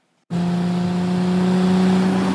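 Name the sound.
car engine revving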